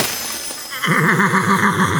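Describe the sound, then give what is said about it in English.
A horse whinnies loudly after a moment of near-quiet, its high, quavering call trembling rapidly up and down in pitch for over a second. “How about if I make you the horse?”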